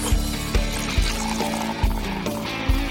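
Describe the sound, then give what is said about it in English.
Beer, Lawson's Sip of Sunshine, is poured into a glass, a steady rushing stream broken by soft glugging pulses every half second or so, with no talking. “It's time to pour yourself a drink and enjoy a happy half hour with an entrepreneur.”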